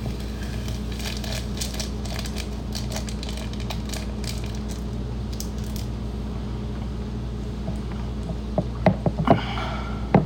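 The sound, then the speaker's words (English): Crinkly rustling and tearing as the tops are ripped off small packets for several seconds, then a few sharper crackles as granules are poured into the bottom of a cup, all over a steady low mechanical hum with no talking. “Now, rip the tops off and pour the granules into the bottom of the cup.”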